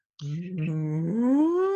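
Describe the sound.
A person imitates a cow's moo with one sustained, loud, voiced call that holds a low tone and then slides upward in pitch toward the end.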